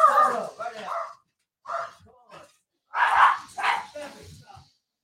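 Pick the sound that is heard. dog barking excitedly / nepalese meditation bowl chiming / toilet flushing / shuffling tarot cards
dog barking excitedly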